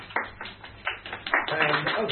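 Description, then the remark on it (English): A few scattered claps grow into a dense, steady round of audience applause, the overlapping hand claps building in loudness toward the end, with faint murmuring voices mixed in. “Round of applause, but I haven't even started.”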